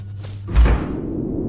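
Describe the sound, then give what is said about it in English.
A single heavy door thud, a deep, loud low-pitched impact that booms briefly and then fades into a soft rumbling tail, with no voices present. “There's the door!”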